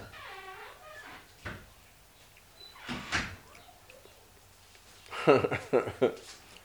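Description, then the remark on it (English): A traveling salesman knocking at a door: a couple of isolated sharp raps, then a quicker burst of three or four knocks near the end, moderately loud over quiet background noise. “There is a slight pause while there is a knocking at the door. It sounds like there is a knocking.”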